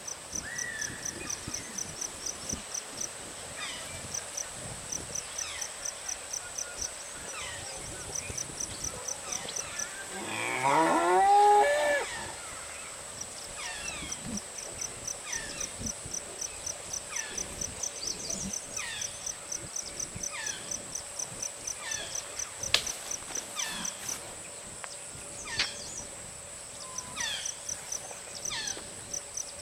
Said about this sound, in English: And hear the sound of Rhinoceros unicornis at home in the Kaziranga National Park in India.